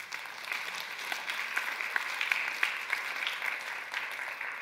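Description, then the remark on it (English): An audience at a church service claps together at the start of Advent in steady, dense applause lasting several seconds, a bright wash of many hands with a few sharper claps poking out, and no voices over it. “And as we begin Advent, we can clap for that.”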